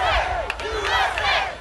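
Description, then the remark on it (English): A capacity wrestling arena crowd roars and shouts continuously in support of the 300-pound wrestler Crush, loud and dense, with individual yells rising above the sustained cheering throughout the short burst. “Unbelievable, the 300-pounder crush had the support of the capacity crowd.”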